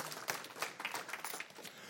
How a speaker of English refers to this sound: Yeah, you can clap. Go ahead. Come on. Clap for Jesus.